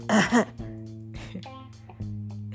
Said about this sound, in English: Hold on. Let me clear my throat.